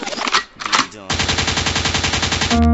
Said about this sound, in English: Rewind, the gunshot means forward. You requested it, so we rewind.